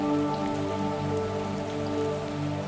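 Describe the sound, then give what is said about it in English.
A waterfall pours into a pool with rocks beside it in a steady, continuous rush with a fine pattering texture, holding an even loudness throughout, over a soft sustained tonal drone. “And when you're ready, you can carefully step out of the powerful flow of falling water, stepping gently onto the rocks beside the pool.”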